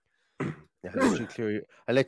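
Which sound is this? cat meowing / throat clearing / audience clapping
throat clearing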